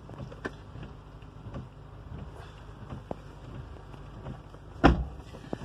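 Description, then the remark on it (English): A car engine, just started, idles with a steady low rumble, with a few faint clicks and one sharper knock near the end. No one speaks. “Glad my car started.”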